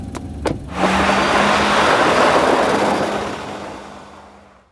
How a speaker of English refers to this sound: The Range Rover crept up the gravel drive and eased to a standstill.